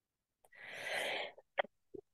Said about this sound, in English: Oh, I really needed to cough all the way through that.